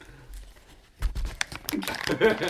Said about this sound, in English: Now throw the bag far away. Crinkle, crinkle, crinkle. Good. And now it's going to uncrinkle slowly.